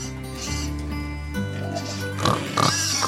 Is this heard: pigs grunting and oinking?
yes